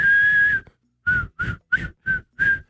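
A whistled tune played in reverse: one long held note, a short gap, then five short, evenly spaced whistled notes, fairly loud with no talking.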